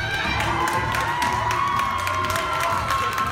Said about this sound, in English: Last year I made a video of me asking this girl I really liked to prom, and I played in front of the whole school. When I asked her the question, everyone started cheering and yelling.